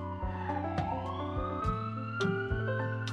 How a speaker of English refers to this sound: Let's wait for the ambulance to pass by.